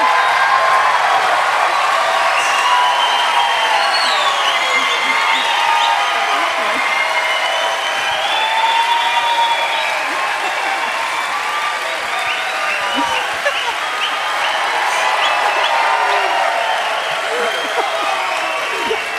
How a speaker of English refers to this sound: So on the count of three, they're going to stand up, and they're going to blow you away with a ruckus. I mean, huge applause. Here we go. 1, 2, 3, go.